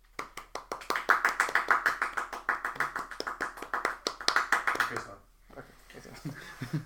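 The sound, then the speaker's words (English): A small group claps in a brisk, uneven round of applause for about five seconds, fairly loud, then it stops and faint voices murmur afterward. “You know, we need a round of applause.”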